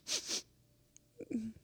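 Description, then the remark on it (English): Two quick, breathy sniffs in a row, fairly loud, followed after a pause by a soft, short whimpering sound. “Those are sad sniffs.”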